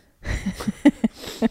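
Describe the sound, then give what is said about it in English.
A hard nasal snort breaks into a quick run of short, sharp, voiced bursts, fairly loud, arriving in an uneven rhythm with no talking. “How the booger come up my nose almost.”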